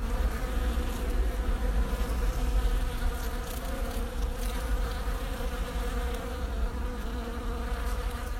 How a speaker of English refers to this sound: Yes, I have another sound of the week. This one contains some very early bees, and they are buzzing round the clematis in the garden of Countryfile magazine colleague Joe Pontin.